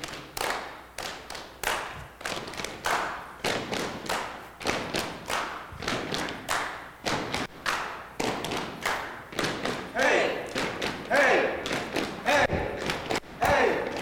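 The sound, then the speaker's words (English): A crowd stomps and claps in a steady repeating beat, heavy thuds alternating with sharp claps, loud and rhythmic, with cheering voices building toward the end. “Keep a good beat.”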